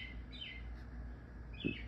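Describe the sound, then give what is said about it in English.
A bird chirps outdoors at 11 o'clock at night in two short, sweeping bursts, one early and one near the end, sounding faint over a steady low background rumble. “This bird out here. It is 11 o'clock at night.”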